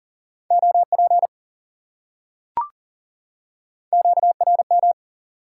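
Fast Morse code tones at 40 words per minute, sending common amateur radio contact (QSO) elements, at a single steady pitch, keyed in two quick bursts of dits and dahs separated by a short pause with a brief click between them; no voices.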